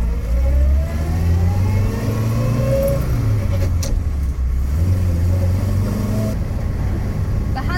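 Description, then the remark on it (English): The small engine of an Austin A40 Farina car revs up loud, its droning pitch climbing, dipping with a gear change, then climbing again over a steady low rumble as the car accelerates. “I'm certainly feeling like I've got a good handle on where the car's going.”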